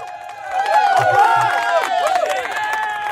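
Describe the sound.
A large crowd cheers and shouts loudly and continuously, a dense wall of voices with a few drawn-out, low boos mixed into the noise.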